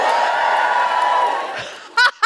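A crowd cheers with a sustained whoop riding over the noise, then the roar fades away, followed by two short, loud voiced bursts that sound like laughter.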